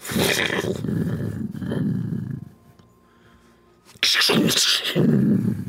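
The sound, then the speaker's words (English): Rolling thunder rumbles loudly for a couple of seconds, fades to a low murmur, then crashes back in with another heavy, deep roll. “And you begin to hear thunder rolling in the distance.”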